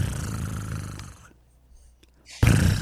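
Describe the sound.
A human voice imitates a jungle cat, making a low, raspy purring growl for about a second, then a short pause before a louder rumbling growl bursts back in.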